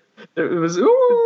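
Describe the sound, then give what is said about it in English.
A man's voice imitates a wolf howl: a short grunt, then a drawn-out tone that glides upward and holds steady, loud, with no other sounds around it. “Swear to God, there was a wolf howling somewhere.”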